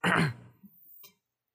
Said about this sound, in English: Let me clear my throat for this.